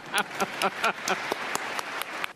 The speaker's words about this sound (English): I have an even more mischievous question. How many of you think you're a genius? Let's give that daring person a round of applause, right?